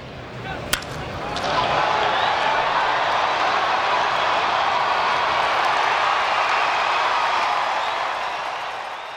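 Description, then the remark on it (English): A single sharp crack of a baseball bat rings out at a baseball game, and the stadium crowd's roar swells up right after, holding as a loud, steady wash of cheering until the end. “Next comes the stereo wash of crowd and bat crack.”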